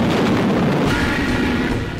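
Naval artillery bombardment by battleships of Iwo Jima before the landing, over three days and nights: a dense, continuous roar of overlapping explosions and deep rumbling booms, loud and sustained throughout, with no voices.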